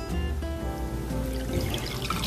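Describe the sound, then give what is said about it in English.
Four ounces of liquor, a double, pour steadily over the top of a glass, a continuous trickle with bright splashing and rising gurgling tones as the glass fills, no voices. “We're going to pour that over the top like that.”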